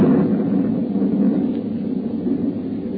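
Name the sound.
thunder clap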